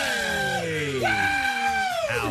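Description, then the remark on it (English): A man yells loudly and excitedly, a few sustained, strained shouts whose pitch swoops up and down, with no other talking around them. “Stop that. Yell that direction.”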